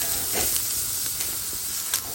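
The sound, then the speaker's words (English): A fire burns in a welded fire pit, giving a steady, airy hiss broken by a few sharp crackles and pops, with no voices. “Yeah, good little fire pit, eh?”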